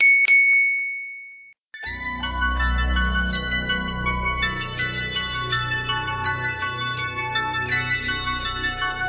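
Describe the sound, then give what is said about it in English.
A bell rings out with a sharp strike, then a louder cluster of bright, overlapping bell tones rings steadily over a low rumble, loud, with no talking. The bell is rung to open a Commander Throwdown segment. “Ring the bell.”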